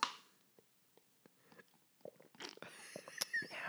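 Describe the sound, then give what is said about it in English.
A voice mimics noisy slurping of a drink right up against the mic: scattered wet clicks at first, then a dense, louder burst of sucking and smacking mouth sounds. “we can totally hear you drinking right in the mic.”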